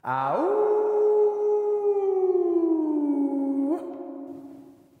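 A single long wolf howl swoops upward, holds a steady tone, then slowly sinks in pitch before tailing off. It is loud, with no talking.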